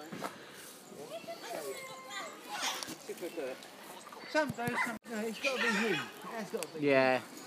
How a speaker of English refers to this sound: These are cockatoos. You can hear a mixture of people, but.